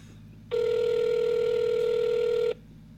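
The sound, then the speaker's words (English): A phone line rings once before voicemail picks up: a steady, buzzy two-second ringback tone heard through the receiver, loud, with quiet line hiss before and after and no one speaking. “I don't know if he's going to answer or not.”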